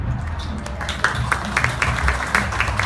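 An audience applauds the storytellers who shared their abortion stories, a dense patter of many hands clapping at once, with a few sharper claps standing out, sustained at an even, fairly loud level throughout.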